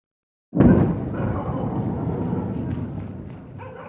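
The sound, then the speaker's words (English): After a brief silence, a single heavy explosion bursts in abruptly during night-time US and UK military air strikes on more than 60 Houthi targets in Yemen, then rolls on as a deep, sustained rumble that only slowly eases off. “Explosions light up the night sky in Yemen as US and UK militaries strike more than 60 targets.”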